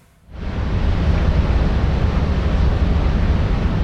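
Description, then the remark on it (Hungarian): A deep, rumbling industrial drone, like a mine or furnace, swells in after a brief moment of quiet and then holds as a loud, steady roar with a heavy low end. “Ez egy ilyen bánya morgás hang.”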